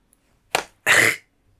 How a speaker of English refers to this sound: I hope you guys heard that slap.